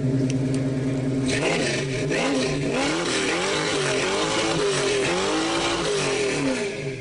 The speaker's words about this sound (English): What do you got here? We do have a muscle car.